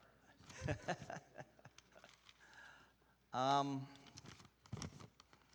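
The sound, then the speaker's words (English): Papers rustle and shuffle in short, crisp bursts as a speaker arranges them before giving a lesson at a church service, with a brief vocal sound breaking in midway before more quiet handling of pages. “Gotta get all my papers shuffled here.”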